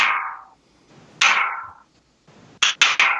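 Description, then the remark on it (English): Sharp, bright tapping on a hard surface imitating a ticking heard inside a wall: two ringing knocks spaced apart, then a quick burst of three. No voices. “But as I would get close to it, I would hear this ticking in the wall, like.”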